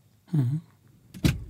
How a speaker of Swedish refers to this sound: Oj, nu öppnas dörren